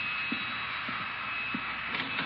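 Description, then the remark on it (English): A vacuum cleaner drones steadily, a constant breathy whine with a thin high tone running through it. Faint low bumps recur about every half second underneath, and no one speaks. “Oh, Bertie's using the vacuum cleaner.”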